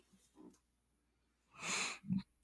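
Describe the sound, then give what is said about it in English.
A man snores with a raspy, breathy inhale followed by a short low snort, after a couple of fainter breathy rumbles. The sound is soft, with no talking. “He's snoring back there.”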